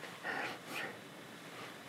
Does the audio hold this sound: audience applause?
no